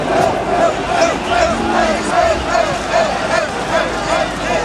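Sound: protest crowd shouting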